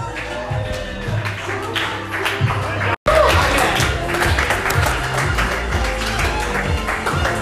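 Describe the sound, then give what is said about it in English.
A crowd claps steadily and loudly for several seconds, with scattered voices and cheering mixed into the dense applause, broken by a brief dropout partway through. “clap a little more for Josh Krebs”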